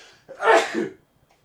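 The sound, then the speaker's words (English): A single sneeze bursts out sharply, a quick explosive rush of air lasting under a second, followed by quiet. “I have to sneeze. I'm sorry.”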